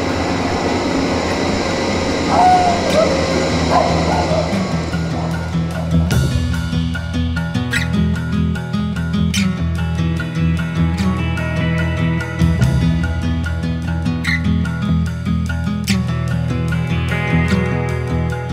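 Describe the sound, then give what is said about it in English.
A loud passenger train rolls into the station at Springfield as a passenger gets off, its heavy rumble steady throughout, with metallic clanks and brief high squeals from the wheels as it slows. No one speaks. “This is my stop, Springfield. Just getting off the train. It's kind of loud.”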